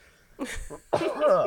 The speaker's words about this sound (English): I'm going to sneeze. So carry on.